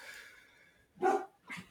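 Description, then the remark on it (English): A dog barks twice in quick succession, two short, sharp barks after a moment of near silence, with no one talking, as another dog walks by on the street. “She really wants to say hi to that dog that's walking by on the street.”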